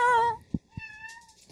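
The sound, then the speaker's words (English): A cat meows twice next to a microphone: a loud, wavering cry followed by a longer, steadier and somewhat softer meow, with two low soft thumps in the short gap between them. “And of course, once you stick the microphone next to it, it's not interested.”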